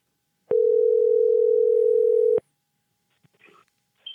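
A single loud ringback tone from a phone call placed on the quiz show Uber Quiz, a steady electronic hum lasting about two seconds before cutting off sharply, followed by near silence and a few faint clicks.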